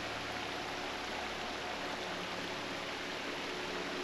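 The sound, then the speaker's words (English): A steady, even rush of falling water from a mountain waterfall, with light trickles dripping from algae, moss and grasses into the larger falls, fills the whole recording without pause. The wash is soft and constant, with no voices present. “You see the algae moss, and grasses, dripping light trickles of water into the larger falls.”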